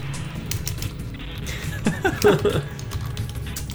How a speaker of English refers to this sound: Excuse the keyboard. It's alright, I'll put in hacking sounds.